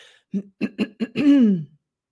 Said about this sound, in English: We're going to ask you to clear your throat gently. If you feel so guided, we are going to do the same.